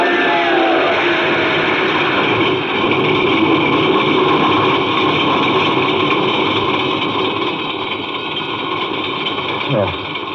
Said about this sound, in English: The starter worked at last. I managed to back up.